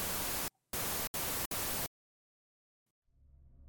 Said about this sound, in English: I despise the sound of static. The vast emptiness of its white noise is heavily unsettling to me.